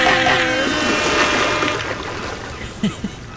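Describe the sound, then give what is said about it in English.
A strong, steady roar of ocean waves washes continuously and loudly, easing slightly toward the end where a few brief splashy bursts break through. “The ocean sounds, it's just really, really strong.”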